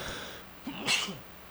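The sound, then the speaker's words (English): A single sharp sneeze, a brief intake followed by a loud burst of breathy noise, over a quiet background. “Excuse me, I had to sneeze there.”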